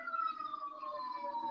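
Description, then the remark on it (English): A police siren wails steadily, its pitch gliding slowly downward as if the vehicle is passing by, fairly loud and continuous with no voices over it. “Can we talk about how funny the sirens are and you're on a cop podcast?”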